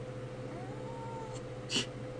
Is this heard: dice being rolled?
no